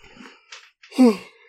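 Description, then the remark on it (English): A big, drawn-out yawn: a breathy inhale rising into a loud, voiced groan that slides downward in pitch, with no talking. “Sorry for that big yawn in the middle.”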